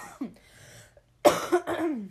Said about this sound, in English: Fuck, I can't edit a cough out, sorry. Don't know how to do that.